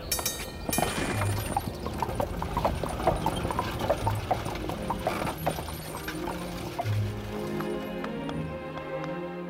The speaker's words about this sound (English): But let's take the horse-drawn streetcar and ride down Main Street.